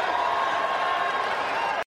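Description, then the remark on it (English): A church crowd cheers wildly for a preacher proclaiming he is blessed, in a dense, steady roar of many voices that holds at full strength for about two seconds, then cuts off abruptly. “Man, he can get that crowd losing their minds.”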